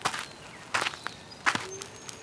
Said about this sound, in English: I'm glad I wore my thick jacket and my good hiking boots. Can you hear my hiking boots crunching in the gravel?